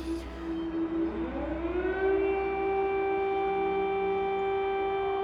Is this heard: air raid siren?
yes